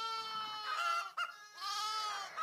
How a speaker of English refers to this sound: That's chickens and lambs. Yes! Yeah, chickens and lambs.